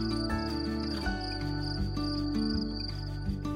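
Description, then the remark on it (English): Soft, steady cricket chirping trills high above a calm musical bed of sustained low tones that shift every second or so. No one speaks. “It was the gentle flowing of a stream, the rustling of the leaves, and the soft chirping of crickets.”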